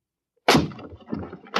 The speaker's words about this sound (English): We'll have to break in. It's locked from the inside.